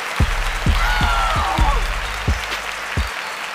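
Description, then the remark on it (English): A steady wash of crowd applause with a whistle rising above it, while a series of deep, booming thumps lands irregularly underneath for a few seconds. “Round of applause.”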